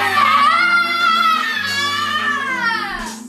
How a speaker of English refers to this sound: All I saw from your side was screaming